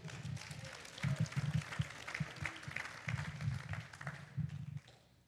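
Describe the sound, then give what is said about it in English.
An audience applauds for about five seconds to welcome the next speaker, a dense, steady wash of many hands clapping at once, fairly loud, with no voices, before the clapping thins and fades out. “Next up, we got Scott O'Malley. Let's give it up for him.”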